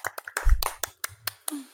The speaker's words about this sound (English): Can we get some golf claps, guys? Like, make this less awkward?